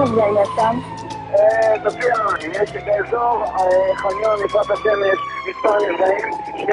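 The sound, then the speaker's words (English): A loud siren wails continuously, its pitch sweeping up and down, as the driver puts on the sirens and lights and rushes to Jaffa, with voices talking underneath and traffic rumble in the background. “So the driver puts on the sirens and the lights and we rush.”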